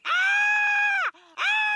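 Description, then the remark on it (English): A caterpillar screams: a loud, piercing screech held steady for about a second, dropping briefly to a lower strained groan, then rising again into a second shriek. No talking. “What the hell is that noise? That caterpillar is screaming.”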